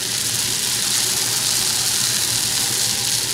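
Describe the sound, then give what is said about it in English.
Potato latkes sizzle in hot canola oil, a steady, bright hiss with fine crackling texture that holds at an even loudness throughout, with no one speaking. “So you can actually hear them. Let's hear them sizzling.”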